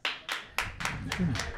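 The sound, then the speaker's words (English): Sparse audience applause in answer to a call to clap if they have cheated on somebody: about six sharp, evenly paced claps, fairly loud, with a low murmur of voices rising underneath toward the end. “Round of applause if you've cheated on somebody before.”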